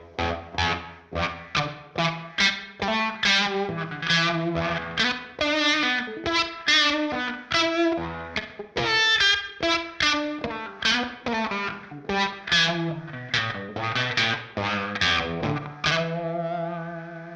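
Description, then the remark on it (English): Electric guitar plays a quick, steady run of picked notes with a bright, slightly distorted tone, washed in reverb with added pre-delay that gives a short slapback-style echo trailing each note. No one speaks. “Okay, I'm just gonna bring up the pre-delay a little bit and hear what that sounds like. So add a little, almost like a slap back.”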